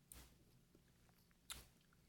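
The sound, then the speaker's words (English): Two sharp chewing crunches of raisins in a raisin-swirl bite, about a second and a half apart, with faint mouth noises in between against a quiet background and no talking. “As soon as I bite into it, I'm confronted by the problem that I have every time with What's these that? Raisins.”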